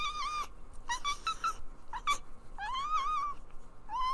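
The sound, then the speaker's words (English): A pet cat named Peaches meows repeatedly, a string of five or six calls of varying length, some short and chirpy, one drawn out and rising, with no one talking. “My cat is staring at me right now.”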